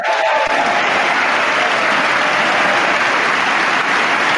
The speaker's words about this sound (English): Oh. Give that man an applause.